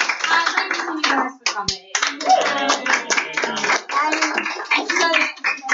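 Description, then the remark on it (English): An audience claps steadily for several seconds, a dense crackle of many hands at an even loudness, with voices talking and calling out underneath. “Yeah, can we just say one more clap and a thank you?”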